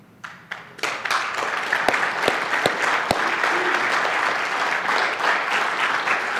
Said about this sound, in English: Y'all take 5 seconds, give God another round of applause.